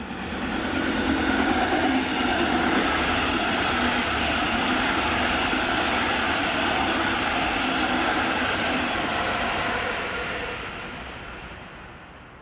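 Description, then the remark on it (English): A train rumbles past on the tracks about 5 feet away, a loud, steady roar of wheels and rattling cars that holds for several seconds before beginning to fade away. “I spoke of a moment where I zoned out only 5 feet from a train that was passing me by.”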